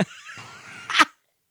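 A single sharp cough bursts out near the microphone after a brief breathy, throaty lead-in, then cuts off into silence.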